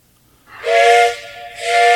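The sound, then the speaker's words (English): A steam train whistle sound effect blows twice in quick succession, loud, each blast a bright sustained tone over a breathy hiss, with a brief dip between them. “The hype train.”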